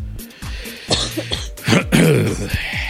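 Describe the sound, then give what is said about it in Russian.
A person with a very sore throat coughs and clears their throat several times in short, rough bursts, with a harsher, louder hack in the middle and no talking. “Я тут кашляю каждые 5 минут”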